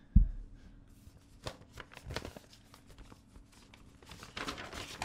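Paper rustling, a continuous series of crisp crinkles and soft flaps at moderate volume, with a low thump at the start and no voices.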